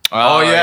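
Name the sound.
sneeze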